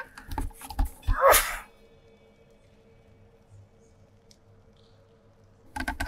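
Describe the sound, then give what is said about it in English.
A single sharp sneeze bursts out, loud and brief, followed by several seconds of quiet room tone with faint low rumbling and a few small clicks. “Bless you.”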